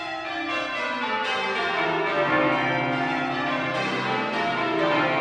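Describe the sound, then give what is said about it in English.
A peal of church bells rings out in steady overlapping succession, each strike sustaining rich metallic overtones that blend into a continuous, resonant wash. No voices are heard. “he discovered bell ringing, this has become a lifelong passion.”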